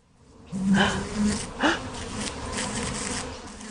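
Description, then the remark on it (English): A drone (male) honeybee, a large bee, buzzes loudly, a steady droning hum with a few rising swells in pitch, continuing for several seconds without any talk. “So they're called drones because they make that loud droning sound.”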